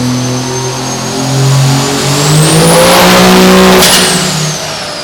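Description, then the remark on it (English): A truck engine revs hard on a dyno, steadily climbing in pitch through its RPM range, roaring loud with a rising high whine as smoke billows and blacks out the room, then holds near the top of its range with no voices. “There we go, starting to really move. The smoke is starting to billow. The room's starting to black out. It's got to be right on the edge of the RPM window.”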